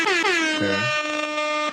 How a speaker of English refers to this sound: Well, air horns.